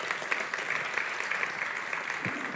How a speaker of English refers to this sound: You can applaud for Mati.